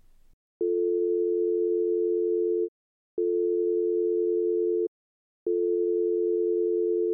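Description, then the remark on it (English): A phone line rings with three long, steady, low-pitched tones, each lasting about two seconds and separated by brief silences, with no voices present. “I already called him. I'm trying again.”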